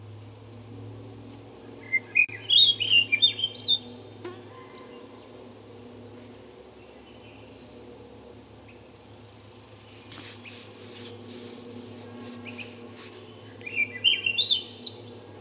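birdsong

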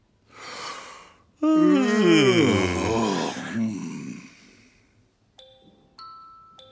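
a person yawning

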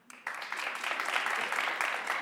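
audience clapping hands

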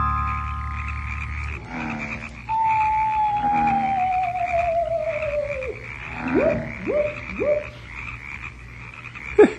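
frogs croaking

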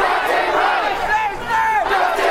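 protest crowd shouting

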